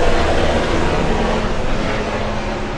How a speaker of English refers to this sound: It's like a helicopter? The hell is that? I think that's my ride.